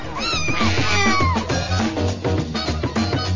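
cat meowing

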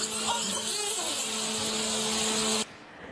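dolphin sounds

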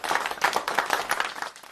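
hands clapping

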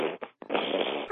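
nose blowing

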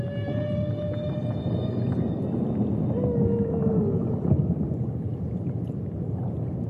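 whale vocalizations underwater

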